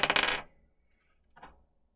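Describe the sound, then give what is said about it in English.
Dice rattle and clatter across a hard surface in a loud burst as initiative is rolled in a tabletop game, then a second, softer tumble follows about a second later. No one speaks. “It's with this dice.”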